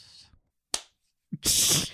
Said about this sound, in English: Did we just clap at the same time? Dude, what is happening?